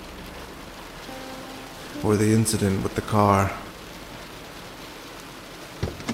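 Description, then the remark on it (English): Rain falls in a steady, even hiss throughout, with a soft patter underneath. A man speaks briefly in the middle, his voice rising above the constant wash of water. “We hurried inside, water pelting my wet head, and Joe with an old newspaper over his. An inadequate umbrella”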